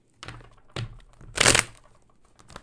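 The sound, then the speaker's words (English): A deck of cards being shuffled: a few soft papery taps and knocks, then a louder, dense riffling burst in the middle, with no talking. “Let's get a good shuffle as well. Here's your ASMR.”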